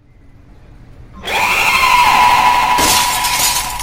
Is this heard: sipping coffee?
no